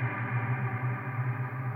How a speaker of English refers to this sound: Inverse decay. Inverse, not reverse. So that means I play and then the reverb fades in instead of fading out, I guess. Let's try that again. I think that's what's going on here. It's like echoing, though, like a delay pedal.